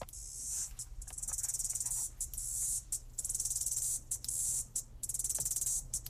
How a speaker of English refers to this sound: First cicada of the season. Hello, summer.